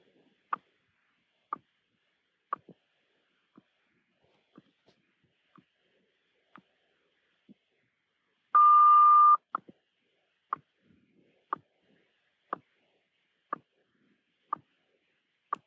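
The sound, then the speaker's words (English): A time signal heard over a phone line: sharp ticks marking each second at a steady pace, with one longer, higher beep partway through. The sound is thin and tinny, with no voices. “Since we're only hearing the ticking, I'm wondering if we're about to get an announcement, but maybe not.”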